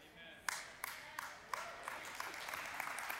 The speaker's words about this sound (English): Let me tell you why these people are clapping.